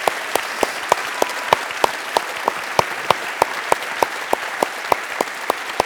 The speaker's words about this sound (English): In the meantime, can we welcome back Craig and have an amazing round of applause?